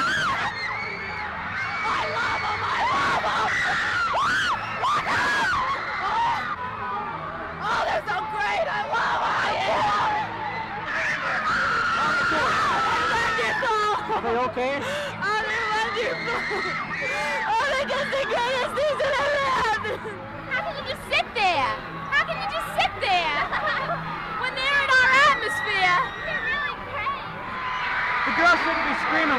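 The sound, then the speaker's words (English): A dense, continuous roar of high-pitched screaming and shrieking from teenage fans at a concert in progress, sustained and loud throughout, with overlapping voices and occasional sharp peaks. “Would you say they're screaming more or less this time than last time?”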